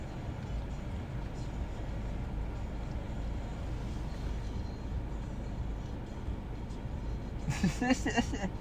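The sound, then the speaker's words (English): A steady, deep rumble fills the whole stretch, like riding inside a moving car, with road and engine noise droning on and a short burst of voice near the end. “you're in your car and never mind.”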